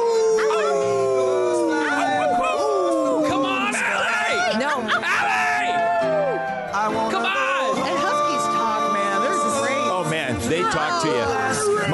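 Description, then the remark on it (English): Several voices howl together in long, wavering, sliding tones, imitating dogs, loud, with overlapping pitches rising and falling continuously through the whole stretch. “And they have different howls for everything under the sun.”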